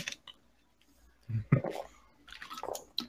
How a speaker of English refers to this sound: No, well, I'm just going to take a drink of water real quick.